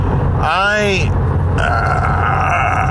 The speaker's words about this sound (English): I'm driving past the Tulsa Tech, and let's see, there's a Mustang there, one of those Shelby ones, silver, black stripes, sweet car. Watch as this guy goes by.